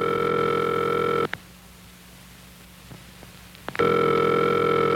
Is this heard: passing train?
no